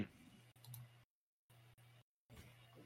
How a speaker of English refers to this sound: Pay no attention to the clicking behind the bug.